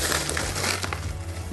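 Dry rolled oats, the first of four ingredients, pour into a nonstick skillet in a steady, dense rustling hiss lasting about a second and a half, with a faint low hum underneath and no talking.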